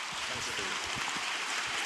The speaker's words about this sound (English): So let's give them a massive round of applause.